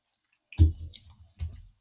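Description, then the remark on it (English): Wet chewing with soft squishing mouth noises in two short bursts separated by a brief pause; no one talks. “Chewing still.”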